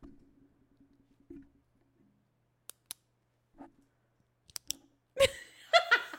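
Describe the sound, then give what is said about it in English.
A pen clicks sharply a few times in quick pairs, crisp against near silence, followed by a burst of laughter or giggling at the end. “Here, let me do my pen.”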